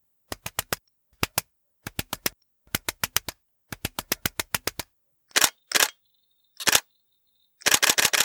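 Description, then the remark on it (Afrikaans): Camera shutter clicks on a cathedral square where a woman feeds pigeons, startling them away: quick bursts of three to seven sharp, crisp snaps, followed by several longer, rougher clattering bursts, with no talking. “Klik. Die duiwe skrik. Vlieg weg. Teresa se kop ruk op. Haar enigste oog kyk vas in 'n wye kameralens.”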